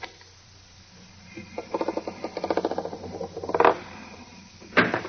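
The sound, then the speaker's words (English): Quiet metallic scraping as the steel of a vault door is ripped back, followed by a quick run of ratcheting clicks as the time clock inside the vault door is set to 2 hours, ending with two sharper metal scrapes. “And if I rip the steel back a little, just enough to reach the clock, like this, there, and then set the clock at 2 hours like this, door should open.”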